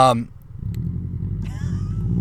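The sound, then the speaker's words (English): A loud race car engine rumbles close by, a deep steady growl that swells into a higher revving whine near the end, with a brief voice at the very start. “There's a race car next to me.”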